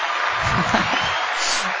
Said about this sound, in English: Where's the applause button